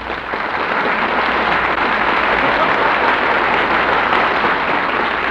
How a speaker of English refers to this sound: Well, did you hear that, Dynamite? That applause was for you. Thanks, everybody. I appreciate that spontaneous ovation.